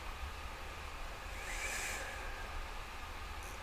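A train rumbles past, a steady low roar with hissing, brief swell of higher-pitched rail noise midway, continuous throughout with no voices.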